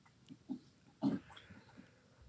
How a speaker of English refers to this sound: Oh, sorry. Sorry, got caught up in a yawn there.